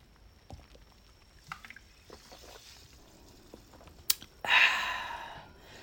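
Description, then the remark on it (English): Soft clinks and small handling noises lead to a sharp glassy knock, followed by a steady rush of alcohol being poured for a second or so. No one speaks. “My first drink of alcohol since I left the Ava Phantom.”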